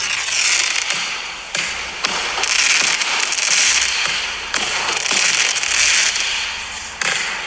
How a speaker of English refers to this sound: What was that? Some fireworks that happened last night.